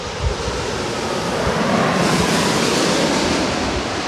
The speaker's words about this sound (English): But I hear a plane. Oh. KLM.